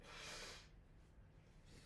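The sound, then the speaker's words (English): A single forceful nose blow, a loud breathy honk lasting about half a second, followed by quieter snuffling and soft breath noise. “If you're gonna blow your nose, turn your head.”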